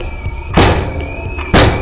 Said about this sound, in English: There's an open freezer aisle with a 2-gallon tub of vanilla ice cream. Grab it. Swing it at the handle.